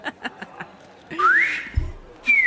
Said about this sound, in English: Can you whistle it? I know you can't whistle, can you? No, still can't whistle this morning. My whistle's gone, yeah.